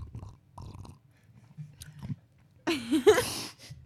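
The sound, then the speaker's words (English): Someone chews crunchy Oreo cookies with their mouth full, soft irregular crunches at first, then a louder, denser burst of munching and mouth noises near the end. No one speaks. “They say that if you eat Oreos with water, that it tastes just like if you're eating it with milk.”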